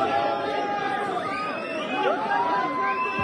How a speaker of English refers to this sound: I don't know why they're cheering.